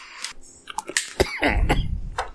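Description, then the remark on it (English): A man coughs several times in a rough burst, with harsh throaty hacks and some wheezy, gravelly clearing toward the end. “…'s got the cough.”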